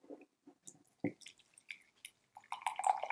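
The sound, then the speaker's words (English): Tea brewed for one minute being poured out: a few scattered drips and small clinks at first, then a steadier, splashy trickle of liquid building toward the end, with no one speaking. “So I'm going to let this brew for 1 minute, just as I would Japanese green tea. And then go ahead and pour it out.”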